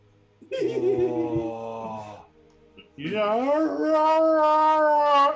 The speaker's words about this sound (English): Oh, when people learn how to play trumpet and they have dogs that howl.